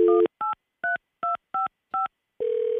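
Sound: telephone keypad dialing tones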